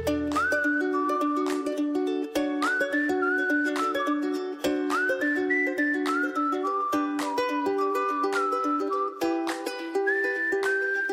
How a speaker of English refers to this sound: Hey, check it out. That's right, there are three easy ways to whistle with your tongue.